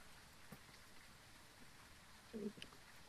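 Soft, steady rain patters throughout with a few scattered drops, fairly quiet and even, briefly interrupted near the end by a short louder murmur.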